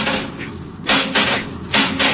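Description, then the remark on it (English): On a spaceship, a metal bar bangs against an Endurium metal bulkhead four times in an uneven rhythm to knock a giant worm loose, each loud, harsh clang trailing a brief ringing tone, with no voices. “I take this bar and knock it loose, Happy.”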